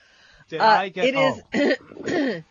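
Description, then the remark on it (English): A man, a caller from Des Moines, Iowa, coughs and clears his throat in four rough, voiced bursts, each lasting a fraction of a second with brief pauses between. “Did you get a diagnosis for your cough?”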